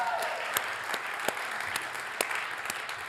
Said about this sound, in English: That worship was incredible, right? Let's give our worship team a round of applause. Come on.